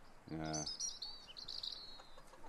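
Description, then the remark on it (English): Small caged birds chirp and tweet in quick, high overlapping bursts, not loud, with a brief lower buzzy call near the start. “Especially that amount of birds, like.”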